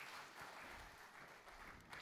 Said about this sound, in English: Give these guys a big round of applause. They did good. Thank you, guys.